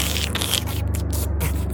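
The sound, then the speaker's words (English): Soft, continuous shuffling and scraping, like someone moving around inside a house, runs over a steady low hum for a couple of seconds with no voices. “and some shuffling.”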